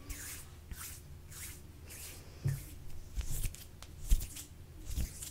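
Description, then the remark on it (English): Soft, rhythmic swishing of hands rubbing down someone's arms, repeated strokes roughly every half second with a few slightly louder brushes and faint low thumps, no voices. “Just rubbing down your arms.”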